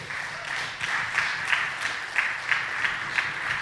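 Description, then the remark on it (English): A crowd at the Madison Story Slam at the Wilmar Center applauds steadily as the next storyteller is introduced, a dense wash of many clapping hands with a few sharper claps popping out at regular intervals. It's moderately loud and sustained throughout, with no one talking. “He's a super good storyteller, and you guys should be clapping right now”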